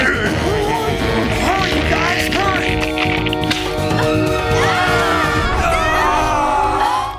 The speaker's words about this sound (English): please put this audio in of Tommy's quote unquote scream as they fall. Again, really checked out.